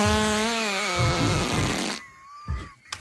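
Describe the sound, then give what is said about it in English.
A long, loud, buzzing fart noise wavers in pitch for about two seconds, then breaks into a rough sputter, followed by a couple of brief, fainter bursts. “He farted in my face.”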